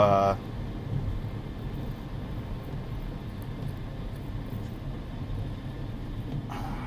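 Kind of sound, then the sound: vehicle, car driving in traffic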